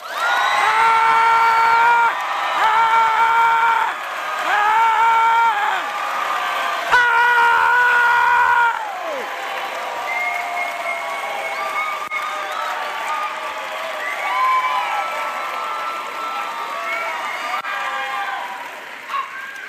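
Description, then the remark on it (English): A large audience gives Jesus a standing ovation, clapping and hollering loudly, with high screams and whoops rising over dense, continuous applause that stays strong for the whole stretch before easing slightly. “I want you to clap and holler as loud as you possibly can right now.”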